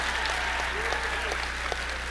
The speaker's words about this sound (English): I've been in this business a long time. I know what a pity clap is.